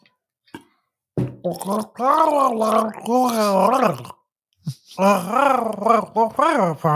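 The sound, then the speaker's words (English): A person talks with water in their mouth, making warbling, gurgling vocal sounds in a few sustained bursts separated by short pauses, fairly loud. “The kind of like if you talk with water in your mouth, this is the sound it makes.”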